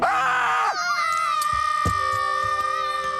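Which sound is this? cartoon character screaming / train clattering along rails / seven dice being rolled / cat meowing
cartoon character screaming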